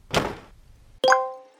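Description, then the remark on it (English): A soft rustling thump, then a single bright electronic My Face social media notification chime rings out with a sharp attack and a ringing tone that fades away over half a second. “Sounds like a My Face notification.”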